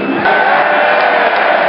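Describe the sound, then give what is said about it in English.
A large stadium crowd boos the referee off at half-time of a football match, a dense, sustained roar of many voices that stays loud and steady throughout, with no clear individual words. “That's a ref, by the way, getting booed off.”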